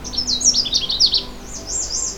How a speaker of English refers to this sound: The Canada Warbler song is loud, clear, and can vary by individual, but generally always has a cheery tone sung from a low perch.